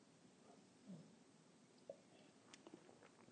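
A quiet sip of coffee: soft mouth noises, then a brief slurp and a few small wet clicks, with no talking.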